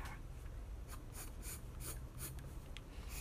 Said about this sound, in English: yeah, don't mind me just drawing an anime.